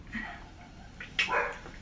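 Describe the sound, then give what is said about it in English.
A dog barks somewhere in the background, a short yelp followed about a second later by a louder, drawn-out bark, both fairly faint with no one talking. “Dude, the dog in the background is like, hey, yo, somebody look at this shit, fam.”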